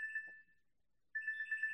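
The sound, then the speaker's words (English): A phone rings with a bright electronic trill as someone calls: two bursts separated by a short silence, somewhat quiet, with no voices present. “I'm hearing there some is, phone ringing.”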